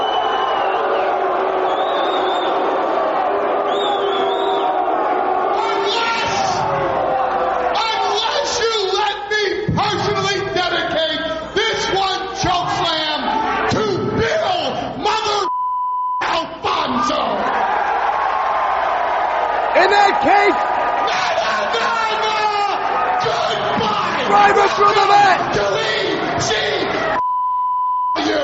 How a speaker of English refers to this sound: So we get another choke slam. The crowd then yell three more times, and Paul E dedicates the third choke slam to everyone at CNN Towers in Atlanta.